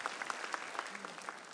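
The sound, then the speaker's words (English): An audience applauds steadily for some 4,000 church volunteers. Many hands clap at once in a dense, even patter of sharp claps that carries on without a break, with no one speaking. “You know, sometimes you can clap yourself because your germ on the left hand is the same as the germs on the right hand.”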